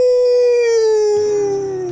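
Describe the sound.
A person lets out one long, loud wolf-like howl, holding a steady tone that slowly sags lower in pitch before trailing off, with no talking around it.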